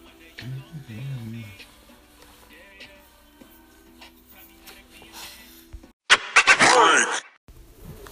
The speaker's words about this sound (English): The monster's fucking snoring